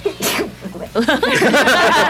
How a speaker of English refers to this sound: Bless you. Bless you.